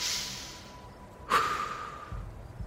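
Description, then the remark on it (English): Steady breathing: a person breathes loudly as a calming technique to help someone through a panic attack, a long, airy breath with a soft rush of air, followed by another slow intake. No one speaks. “started to breathe loudly enough for me to hear.”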